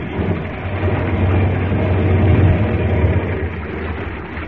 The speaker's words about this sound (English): Well, we land. I'll put the plane down in the water close by. All right. Here we go.